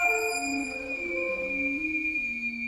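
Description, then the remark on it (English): Instruments play an orchestral version of recorded whale song from George Crumb's Vox Belene (Voice of the Whale): a thin, high sustained tone hangs over lower, wavering notes that slide and step between pitches, steady and unbroken throughout, with no voices. “We hear, for example, a version of recorded whale song in George Crumb's Vox Belene, or Voice of the Whale.”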